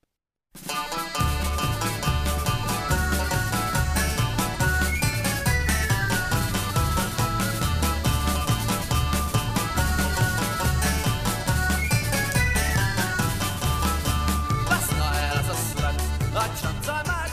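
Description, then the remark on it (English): A lively tin whistle melody runs over a loud, full band with steady driving drums and bass, playing continuously without any voices. “And yeah, the tin whistle definitely in that band.”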